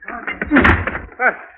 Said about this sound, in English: What's the matter? Door is jammed. Door is jammed. Will you let me out, please?